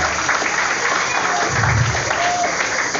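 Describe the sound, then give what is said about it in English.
An audience claps steadily for three seconds, a dense, continuous wash of hands with even loudness, and a low voice briefly rises underneath midway through. “You're not clapping.”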